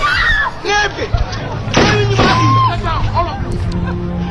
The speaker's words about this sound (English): So I'm going to play this clip here from Hotel Rwanda. It's pretty violent. There's like gunshot.